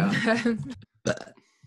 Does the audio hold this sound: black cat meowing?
no